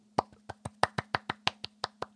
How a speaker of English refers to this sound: That was the smallest round of applause for you pulling the trigger on your rig.